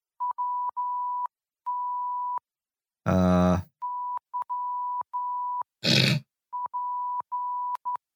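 A steady, high-pitched tone keys on and off in short dots and longer dashes, spelling out the letters WTYP in Morse code. Two loud bursts break in: a rough, growling blast and a brief harsh noise.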